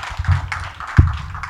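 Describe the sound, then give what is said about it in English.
A church audience clapping their hands together during preaching, a dense, steady patter of many overlapping claps with a sharper, louder thump partway through and no voices. “If you love me, clap your hands.”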